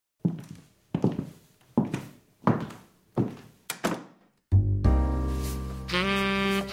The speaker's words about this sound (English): As I closed the door behind her and the knock of her stilettos against the creaky hardwood stairs faded away, I noticed I felt a sensation, a swelling, in my heart.